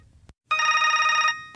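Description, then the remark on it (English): A telephone rings once in a single loud, buzzy burst lasting under a second, framed by a soft click before and after, with no voices. “Paige never did call Biegler back that night, so the next day he tried calling her.”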